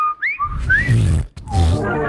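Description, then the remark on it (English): A botched whistle: a few thin, wavering pitch slides that quickly break down into breathy, sputtering blowing and grunt-like snorts. “Never could whistle.”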